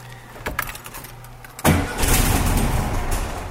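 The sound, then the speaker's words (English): A 1974 Volkswagen Beetle engine, in a garage and not driven for a couple of weeks, cranks with a few quick bursts, then catches after a moment and settles into a loud, steady, rumbling idle. “I'm opening the door of my 1974 Volkswagen Beetle, sitting in my swivel seat here. I haven't actually driven this car in a couple weeks. Hopefully she'll start right up for me.”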